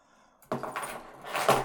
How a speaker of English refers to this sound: Add keys on one side, making sure keys face inward. Use spacer between keys if desired.